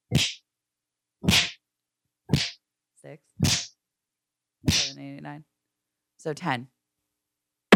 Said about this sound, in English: This is audio of him beating up his cellmate last week. He's in prison. There it is.